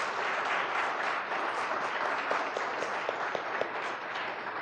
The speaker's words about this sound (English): this year she was recognized as the Female Student of the Year at MTSU, so let's give her a round of applause for that.